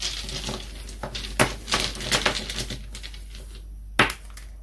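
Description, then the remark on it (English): Small divination dice are rolled, rattling and tumbling across a hard surface in a quick burst of clicks and clacks, then settle, with one last sharp knock near the end. Fairly quiet, no voices. “So we'll look at the divination dice next.”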